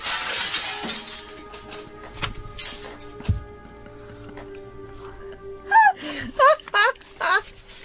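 A window shatters as a bullet passes through: a burst of breaking glass crashes and tinkles in the opening second, fading into a low rumble, followed later by a few short, strained moaning vocal cries.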